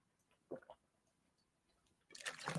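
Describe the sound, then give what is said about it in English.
A couple of soft, quick liquid sounds, then a louder rush of water, like pouring or slurping, filling the last half second or so. No one speaks. “You know me, Cancer rising, got to get my water.”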